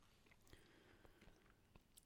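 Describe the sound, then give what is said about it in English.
Crunchy chewing of crusty homemade sourdough bread, baked that morning, as a man eats it, with sharp crackling bites every half second or so over a soft background hiss. Nobody speaks. “Oh, he seems to be enjoying it. It sounds crunchy.”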